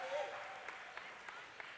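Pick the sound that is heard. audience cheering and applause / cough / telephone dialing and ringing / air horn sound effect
audience cheering and applause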